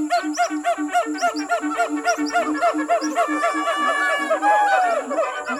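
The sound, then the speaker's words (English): Gibbons call loudly at a base camp, going through the supplies: a fast rhythmic run of rising-and-falling whoops that build into overlapping hoots and a long swooping note near the end. “Steve, what do you think these gibbons are up to over here?”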